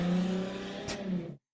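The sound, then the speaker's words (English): A very loud car exhaust revs in the background with a deep, sustained engine drone, briefly dipping and surging before cutting off abruptly after about a second and a half. No one speaks. “That was not a trumpet. That was a very loud exhaust.”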